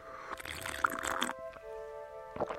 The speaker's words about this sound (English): Before you do, let me get a sip. I need some deer park to wet my whistle.